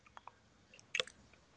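Someone chewing food with soft, wet mouth clicks, then a louder crunchy burst of chewing near the middle before it quiets again. No one talks.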